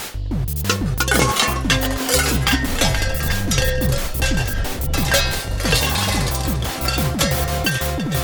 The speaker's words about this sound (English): You check pots and pans on that side, I'll check this side.